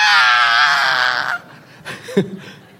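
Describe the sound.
A person imitates a shrill, high-pitched scream of fright: one loud, sustained wavering shriek lasting over a second, then quieter breathy vocal sounds and a short low grunt.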